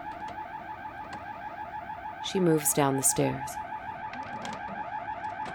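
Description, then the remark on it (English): A home security alarm showing a fault drones steadily, its unchanging electronic tone filling the whole recording, while a person speaks briefly over it in the middle. “The constant drone of the alarm kills all sound, making her more aware of her other senses.”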